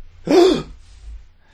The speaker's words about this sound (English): You gasp loudly. Give me a gasp.